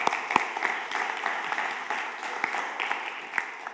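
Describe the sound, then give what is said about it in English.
A church audience applauds steadily, a dense wash of many hands clapping with a few sharper individual claps standing out, holding at a moderate level throughout with no voices. “This is the, guys, this is, yeah, go ahead and clap for Ben.”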